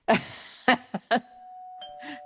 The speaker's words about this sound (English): Oh, there's the doorbell.